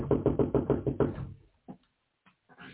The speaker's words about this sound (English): Ooh, I got something to hit on the wall with. It may make the dogs bark. I want him to come bring me something.